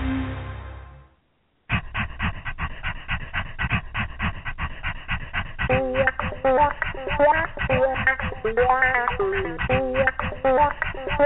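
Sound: dog panting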